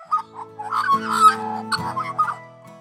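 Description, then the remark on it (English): Birds call on a golf course in quick, overlapping bursts, a busy chatter of short chirps and clucking notes, over a steady low hum in the background. “Drippy nose dealt with, onwards and upwards, over hills, skirting waterways, and listening to the thwack of a golf ball in between bird songs.”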